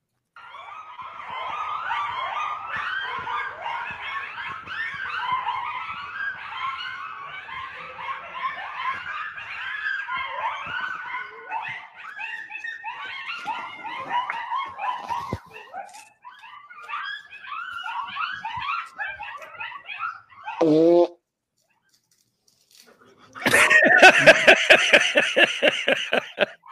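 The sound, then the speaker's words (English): A pack of coyotes yips and chatters in a dense, frantic chorus for a long stretch, then one howl swoops down, a brief silence follows, and another loud burst of yipping erupts. “Now, I know it's bad quality, but are those the eyes of all the coyotes?”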